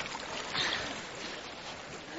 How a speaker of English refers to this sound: A second time the water is being poured upon the wood and offering.